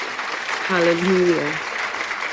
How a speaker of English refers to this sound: I want everybody just to, you know, give a clap for our dear woman of God.